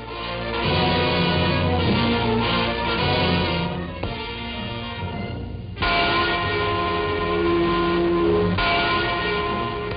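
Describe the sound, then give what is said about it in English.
The Freedom Bell in West Berlin, a large church bell, tolls repeatedly on the first anniversary of the Berlin Wall, its deep, resonant strikes overlapping into a continuous ringing wash with long sustained hum, loud, with no voices present. “Freedom Bell in West Berlin tolls in sympathy for East Germans on the first anniversary of the Wall of Shame that holds them prisoners.”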